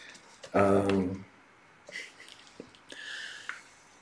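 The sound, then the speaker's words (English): A short, loud vocal exhale is followed by quiet wet gulping and swallowing noises as someone takes a swig of strawberry-flavored fruit water, a few soft clicks, and a breathy hiss near the end. “All that said, and I need a swig of something to drink.”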